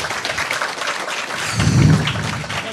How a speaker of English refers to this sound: Let's clap. Round of applause.